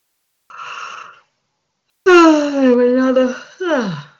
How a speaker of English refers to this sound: Another yawn here. Energy's moving.